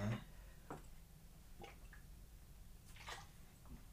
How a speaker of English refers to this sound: All right, let me take a mild water break before we get into this next topic.